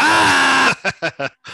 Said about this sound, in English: Do you want to do an Adam Buxton scream? Okay.